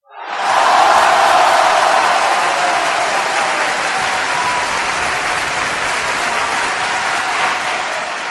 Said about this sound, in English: And this fake crowd that I'm going to push this button for is also for him.